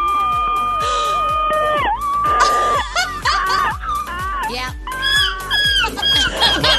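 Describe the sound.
Someone imitates a seagull in a seagull-call competition on Elvis Duran and the Morning Show, letting out loud, strained squawking cries with sliding pitch, repeated in quick succession, with a brief spoken word at one point.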